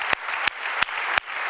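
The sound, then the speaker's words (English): A church audience applauds the young people, producing a dense wash of clapping with sharp, loud claps cutting through at a steady rhythm, roughly three per second, with no talking. “Let's give the young people a round of applause tonight.”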